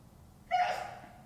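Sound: sneeze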